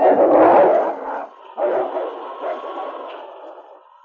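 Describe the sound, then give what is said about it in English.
A pack of wolves growl and snarl angrily together in an overlapping, rumbling, loud chorus, with a brief pause before the growling swells again and slowly fades. “A chorus of angry growls arose from the pack.”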